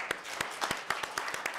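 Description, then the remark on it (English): Audience applause for a panel on politics and journalism at the Hauenstein Center's 2017 Conservative Progressive Summit: a dense wash of many hands clapping, with sharper individual claps popping out at an uneven rhythm, fairly soft and steady throughout with no voices. “Yeah, let's please give a round of applause for our panel.”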